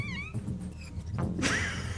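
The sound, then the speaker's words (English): A voice imitates someone screaming in pain: a short, high, wavering wail that comes out almost like a yowling cat, fairly quiet in the background amid rumbling noise. “I was trying to make a screaming out in pain noise in the background.”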